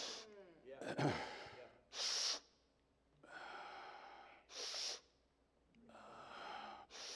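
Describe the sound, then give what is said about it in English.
A man's voice imitates a 10-year-old boy's labored, wheezing breathing that sounded like a machine: several sharp, noisy gasps alternating with long, raspy, groaning exhales in a slow, heavy rhythm, fairly loud. “When he started breathing, he sounded like a machine. Now, I'm not making fun of him. This is the way he was breathing.”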